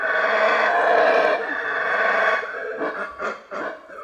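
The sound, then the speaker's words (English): A howler monkey roars in a loud, rasping, sustained bellow lasting over two seconds, followed by several shorter guttural bursts that rise and fall. “They roar to warn other monkeys to stay away from their trees.”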